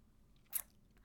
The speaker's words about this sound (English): let me just briefly tell you a little bit about me and my story and why I'm so passionate about this after I take a sip of water.